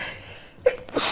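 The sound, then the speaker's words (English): A single sneeze: a quick sharp intake of breath, then a bright, noisy burst of air that ends the moment abruptly. “Bless you.”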